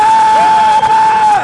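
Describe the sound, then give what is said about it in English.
An audience claps and shouts praise to the Lord in a loud, continuous roar of cheering, with a steady high-pitched whoop or held note running through nearly the whole moment. “Put your hands together and give the Lord a shout.”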